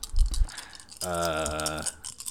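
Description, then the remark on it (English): A brief clatter of many dice tumbling and knocking across a hard tabletop, followed by a steady humming tone lasting almost a second. “A lot of dice. I hear a lot of dice rolling.”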